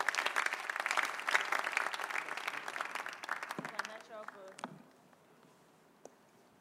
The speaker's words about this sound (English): Please welcome her with a clap.